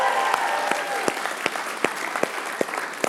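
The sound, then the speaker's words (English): A crowd claps and cheers to welcome people watching from the lobby, a dense wash of applause with sharp individual claps popping out irregularly above the continuous hiss of many hands, with faint cheering mixed in. “So would you give them a cheer so they can hear it too, would you?”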